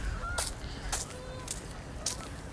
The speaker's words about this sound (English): Stupid geese.